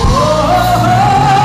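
A loud shouted war cry: one sustained, full-throated yell held for over a second, its pitch edging slightly upward, with a low steady rumble underneath.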